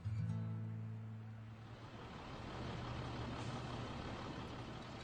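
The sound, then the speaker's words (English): An old school bus idles in a parking lot in the center of town, where migrant farm workers board buses to the fields, with a deep, steady diesel rumble, while a loud sustained hiss of air brakes washes over it. No one speaks. “come to this parking lot in the center of town, where they board old school buses that take them to the fields.”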